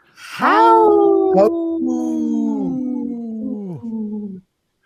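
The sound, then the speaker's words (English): Dallas Goldtooth imitates a wolf howl as a radio tag for Native Roots Radio, holding a loud, drawn-out wavering tone that rises sharply, then breaks into several sustained segments that each droop at the end, fading after about four seconds. “He was a guest, and I asked him to do a radio tag, and I didn't expect him to do that, what he did.”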